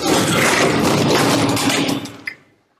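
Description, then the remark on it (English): A heavy dresser, tipped over by people gripping it together on a count of three, crashes onto the floor: a loud, dense rumble and scrape for about two seconds, then one sharp knock as it settles, followed by silence. “Help me tip it.”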